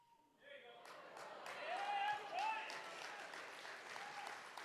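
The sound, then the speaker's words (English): A brief steady whistled tone is cut short as an audience bursts too soon into dense, sustained applause, with a couple of rising whistles and cheers over the clapping. “You guys clapped way too soon.”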